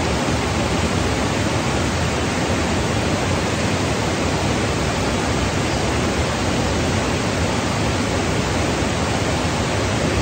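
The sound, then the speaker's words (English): A steady, unbroken roar of rushing water, like a waterfall, at a location near the La Fortuna waterfall in Costa Rica, filling the whole stretch at an even, loud level with no voices or other sounds. “It's near the La Fortuna waterfall, which is a tourist attraction.”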